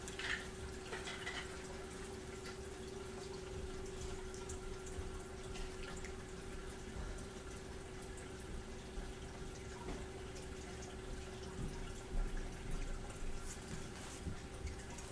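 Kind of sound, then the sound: household object, water running from tap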